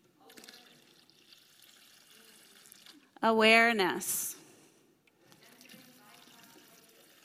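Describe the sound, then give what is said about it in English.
Water is poured into a container for about a second, a loud gurgling splash whose pitch rises as the vessel fills, with quiet talking before and after. “Let's pour a lot of that in here.”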